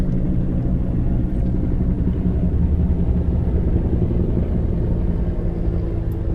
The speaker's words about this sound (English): Can you guys hear that? The helicopter coming over?